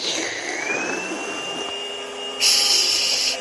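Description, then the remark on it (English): A vacuum cleaner whines steadily, its motor pitch rising as it spins up, then a louder hissing surge of suction kicks in near the end, heard alone without talk. “It sounds like the vacuum. Yes, it was the vacuum.”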